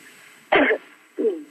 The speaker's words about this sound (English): I'm coughing a little bit because of the cold weather, no?